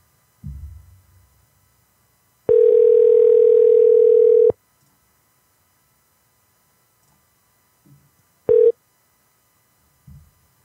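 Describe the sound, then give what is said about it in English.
Ringing on an unanswered phone call: one steady, mid-pitched two-second ring, a long silent gap, then a second ring cut short. Faint low thumps at the start and end; no talking. “Damn, people just ain't answering.”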